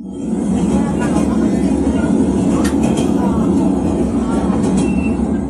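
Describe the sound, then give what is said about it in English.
A train in Vietnam runs steadily along the rails, its loud, continuous low rumble filling the space, with a few brief metallic clicks and rattles rising over the drone partway through. “However, I decided to take a mode of transport that has seemingly been a forgotten part of Vietnamese culture, the train.”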